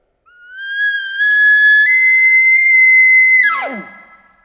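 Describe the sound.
An imitated elk location bugle, a non-threatening call: a high, whistling tone rises and holds steady for about three seconds, then breaks sharply downward into a short, raspy grunt at the end.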